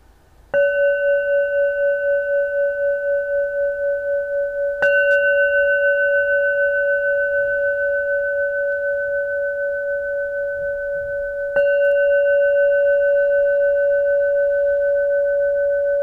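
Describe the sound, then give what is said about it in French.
A bell is struck three times, each strike blooming into a long, steady, humming tone that rings on without fading much before the next one. No one speaks. “La cloche sera entendue.”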